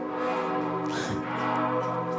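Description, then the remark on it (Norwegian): Carillon bells chime in a steady wash of overlapping ringing tones, with a brighter strike partway through and their notes sustaining at an even, moderate loudness, with no talking. “Og mens vi venter på at de kommer opp, så kan vi jo nyte fine klokkespillet.”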